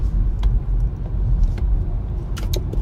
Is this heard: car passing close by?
yes